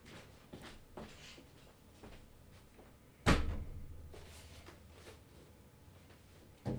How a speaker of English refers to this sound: And now he's slamming door. He seems pissed.